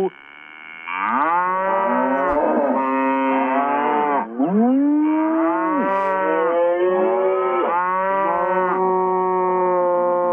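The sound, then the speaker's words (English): A loud chorus of cows mooing, several long, overlapping calls rising and falling together for about ten seconds, with no talking, played as the Friday 'Deca Moo' to open a show. “But let's start this show off the way we do every Friday with a Deca Moo.”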